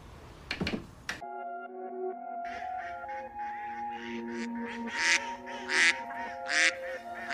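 A flock of geese honks repeatedly in loud, overlapping bursts over a steady droning tone, after a brief rough noise at the start. No one speaks.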